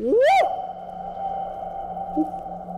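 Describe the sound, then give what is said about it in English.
A single loud shout rings out down the empty, unlit Tideway sewer tunnel in London, then echoes and hums on for seconds, its resonant tone slowly fading into a steady low drone. “Do you mind if I have a shout down the tunnel, see what the echo's like?”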